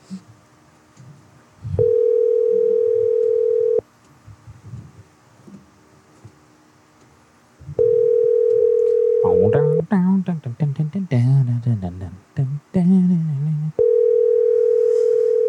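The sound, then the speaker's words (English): A phone rings back through the earpiece in steady, evenly spaced tones, each a couple of seconds long, with a brief burst of muffled speech-like sound between the later rings. “Oh, come on, buddy. Answer the phone, buddy.”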